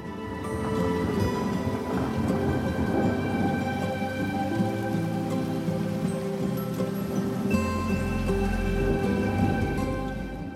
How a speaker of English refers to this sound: Now focus on the sound of the water as it continues to run downstream.